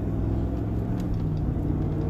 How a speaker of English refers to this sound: I've got my 8-cylinder, 5.7 liter, 8-cylinder fucking hemispheric engine roaring. You hear that? Woof. Sucking down that fuel, combusting in those chambers, baby.